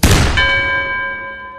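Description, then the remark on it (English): A sharp pistol shot cracks against a metal bell, which rings out with a single loud, clear tone that hums and slowly fades. No voices are heard. “And he's gonna pull his pistol and aim it at the bell and fire.”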